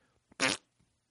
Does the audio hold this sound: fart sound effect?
yes